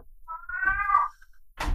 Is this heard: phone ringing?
no